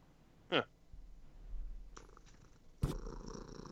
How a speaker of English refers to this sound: There's a kitty! I heard a purring, and that saved this. I was so angry, but the purring has sent me the therapy cat. I require a therapy cat.